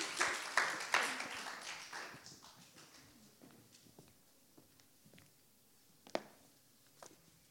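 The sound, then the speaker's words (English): A group of people applauds to thank a woman who has just spoken to them, in a brisk burst of clapping that quickly thins out into scattered, fading claps, with a few isolated claps near the end. “So let's give her a clap and thank her for being brave enough to talk to us today.”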